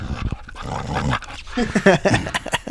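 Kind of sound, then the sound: animal, dog vocalizing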